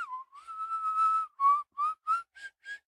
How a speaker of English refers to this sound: That's an inhale whistle.